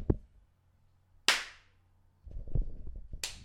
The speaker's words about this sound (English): Anyway, hold on, let me clap.